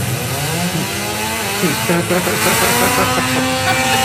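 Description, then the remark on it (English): A Prius car engine roars, revving hard with its pitch climbing steadily as it accelerates, a loud, continuous mechanical whine that swells and rises over about four seconds. “I didn't think a Prius could do that, Ed.”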